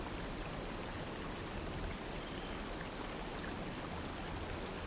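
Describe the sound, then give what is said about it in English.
A waterfall rushes steadily in a continuous, even roar of falling water, sustained and unbroken throughout, with no voices present. “This waterfall giving a sense of power, yet peace.”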